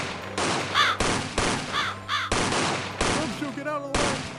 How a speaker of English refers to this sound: Crows, attack those pigs. Oh my god, the crow's got a gun. Get down!